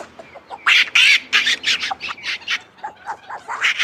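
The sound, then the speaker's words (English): Capuchin monkeys give a rapid, overlapping string of shrill, bird-like cheeps and squawks, loud, with no one talking. “Well, they have a lot of kind of like bird kind of quality sounds, little cheeps and things.”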